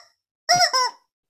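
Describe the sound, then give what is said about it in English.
A big yellow plastic toy chicken gets squeezed, letting out one loud, wheezy squawk in two quick bursts, about half a second long, with silence around it and no talking. “I'm showing everyone my plastic cock.”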